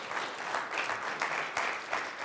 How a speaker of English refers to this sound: That's right. Give God a hand clap. That's right.